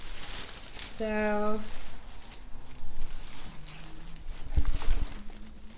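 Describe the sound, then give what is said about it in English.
Crisp crinkling and rustling of paper being unwrapped from a large bundle of fresh herbs, continuing in irregular bursts, with a brief hummed vocal tone early on and some faint background voices. “We have something wrapped in paper.”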